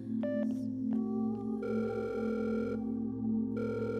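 A phone rings out on an outgoing call, an electronic ringback tone that cuts in and out over a steady low electrical hum, with a few brief beeps at the start.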